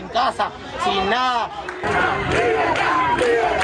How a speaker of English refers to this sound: Soon the police arrive and they begin to drag off people in the crowd. The arrests and the violence only make the demonstrators angrier. We are not afraid, they cry out.